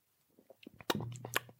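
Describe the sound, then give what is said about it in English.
Quiet mouth sounds: a few soft lip clicks, then a short wet slurp with brief smacking as someone takes a single sip of a drink. No one speaks. “So one sip, that's what we're doing.”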